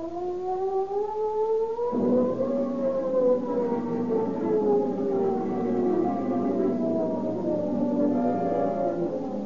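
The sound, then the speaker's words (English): The San Quentin prison siren wails loudly and steadily during an escape, its tone slowly rising and falling in long sweeps, with a second overlapping wail joining partway through. No voices are heard. “The ominous wail of the San Quentin siren is the call to arms, which mobilizes Marin County law enforcement officers into a huge posse.”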